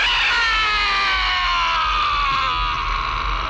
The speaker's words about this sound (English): Here's the worst scream that we've heard in a while.